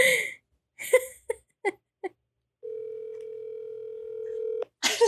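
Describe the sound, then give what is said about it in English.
A few short, clipped bursts give way to a steady, low-pitched telephone dial tone as someone calls a woman, holding for about two seconds before stopping abruptly as a voice breaks in. “She told like lots of should I call her?”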